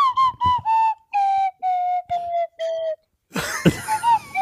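A slide whistle plays about six short, breathy notes near one pitch, with slight bends, then ends in a noisy, scrappy burst of wavering squeals.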